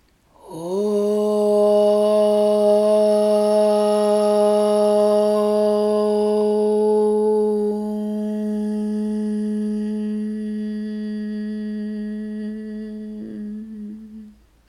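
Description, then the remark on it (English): A single long chanted Om, sung after a deep breath in, a steady sustained voiced drone with rich harmonics, held for about thirteen seconds, softening slightly halfway through and ending with a closing hum. “And take a deep breath in for one sound of Om.”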